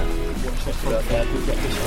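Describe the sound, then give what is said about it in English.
Water sloshes and churns continuously beneath a vehicle wading through pretty deep water, fairly loud over a low rumble, with a voice faintly audible underneath. “You can hear the water sloshing beneath us.”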